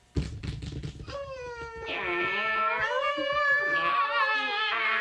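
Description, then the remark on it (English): Several voices mimic cat meows together, overlapping into long, wavering, high-pitched yowls that swell and hold loudly for a few seconds after a brief burst of clatter. “And then everybody would be like, meow.”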